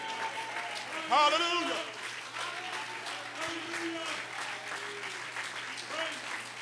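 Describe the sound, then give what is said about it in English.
A church audience stands and claps hands to magnify the Lord, dense, steady applause with voices calling out and cheering over it, a brief louder shout near the start, continuing at an even level throughout. “I wish I could get a few people just to stand to your feet, clap your hands, magnify the Lord.”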